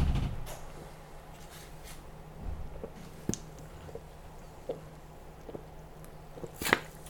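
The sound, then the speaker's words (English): Someone takes a drink of Squirt grapefruit soda: soft gulps and faint wet clicks scattered over a quiet background, with a brief, sharper fizzing clatter near the end. No one speaks. “Has the soda. I took a drink break.”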